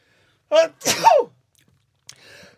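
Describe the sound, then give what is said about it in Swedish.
A single loud sneeze with a sharp breathy intake and explosive burst, followed after a short pause by a faint, quieter breathy sound. “Prosit.”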